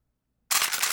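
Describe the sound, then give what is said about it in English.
A gun being loaded: after a beat of silence, one abrupt, loud mechanical rasp bursts in and holds for about half a second, bright and hissy, with no voices. “That's me loading my gun for anybody who got an issue.”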